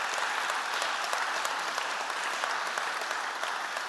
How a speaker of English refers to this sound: I think we should give him a round of applause, first of all.